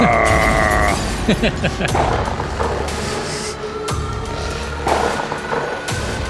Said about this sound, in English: Wait for the bass drop. Explosions. Yeah, explosions and shit.